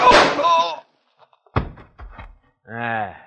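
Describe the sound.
A single sharp, loud crack with a quick decaying tail cuts between shouted voices, a gunshot fired during a quarrel over water rights on a man's land, followed by a short rattle and then more raised speech.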